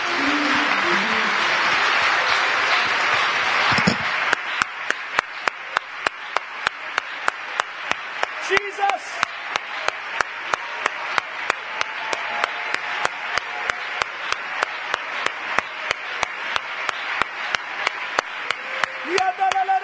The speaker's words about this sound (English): Give the Lord one more good hand clap of praise.